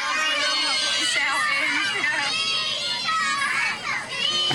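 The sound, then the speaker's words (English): A crowd of children on a coach shouting and chanting "Leeds Castle" together, loud, with overlapping high voices filling the space continuously and no pauses. “They were screaming and they were chanting Leeds Castle as well.”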